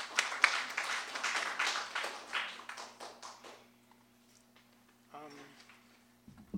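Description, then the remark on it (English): A small group at Skylight claps briskly for about three seconds, welcoming a new staff member who is about to show some photography; the scattered applause thins out and fades, followed by quiet and a brief voice near the end. “He's going to show us some photography, so please give him a round of applause.”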